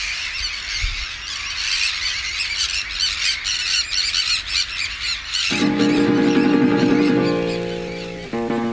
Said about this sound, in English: Something's just alarmed all the gulls and the terns. They've all taken off.